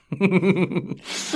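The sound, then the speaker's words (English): A drawn-out voiced yawn from a man, wavering in pitch for nearly a second, followed by a long breathy exhale and the start of a voice at the end. “…'s yawning.”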